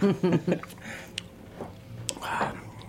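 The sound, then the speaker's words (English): Wet mouth sounds of someone sipping a fresh Brooklyn-made German-style beer: a brief voiced murmur, then soft slurps and small clicks, with a louder slurping sip near the end. “Let me take another sip.”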